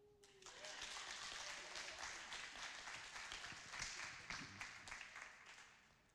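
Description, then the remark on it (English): An audience claps steadily as people are invited up to talk about the junior youth programme, a dense crackle of many hands that swells quickly and holds at a fairly loud level before tapering slightly at the end. “You can clap.”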